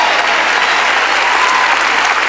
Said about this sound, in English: Did y'all notice how the claps went down a little bit right there?